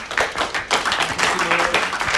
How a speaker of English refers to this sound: I want to say thank you to the one person who's raised their hand. Can we just give them a round of applause for a moment?